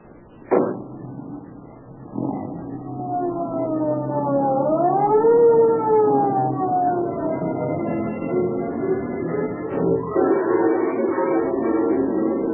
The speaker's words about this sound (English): Although the police car starts its journey with sirens screaming, it enters the neighborhood where Edna lives in silence.